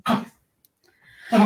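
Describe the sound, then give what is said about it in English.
A female dog choking and coughing in two harsh, raspy bursts about a second apart, the second rising out of a strained wheeze; fairly loud, with no talking. “Sorry, it's my dog just choking.”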